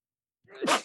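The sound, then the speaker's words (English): A single sharp sneeze bursts out after a moment of silence, fairly loud, with a quick rising intake and a breathy, explosive release. “Bless you. Excuse me.”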